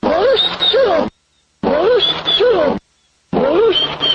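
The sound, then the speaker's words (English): A dog's vocalizing, processed with a computer program to sound almost like speech: a loud, warbling phrase with wavering rising and falling pitch, repeated three identical times with short silences between. “Okay, what do you think the dog was saying, Bobby?”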